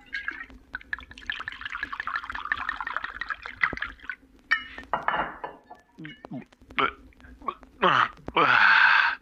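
Glassware clinks and shuffles, then water pours into a glass in a few short splashes, ending with a louder, steady pour whose pitch rises as the glass fills.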